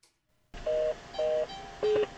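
Three loud electronic car warning beeps, each a steady tone lasting about a quarter second. The first two share a medium pitch and the third drops lower, with no talking.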